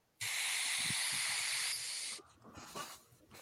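A loud, steady hiss like a vape exhale starts abruptly and holds for about two seconds, easing slightly before cutting off, followed by faint scattered rustling.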